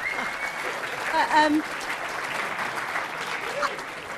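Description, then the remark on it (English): A live audience claps steadily for several seconds, a dense, even wash of applause with a brief swell of voices and a small exclamation partway through. “got a bigger clap than Mother Teresa story.”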